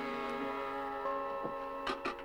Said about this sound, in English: And so we watch him, protected by the dark, as he climbs up on the roof of the schoolhouse and climbs inside the belfry. In doing so, he nudges the bell, so it gives just the slightest of a ring.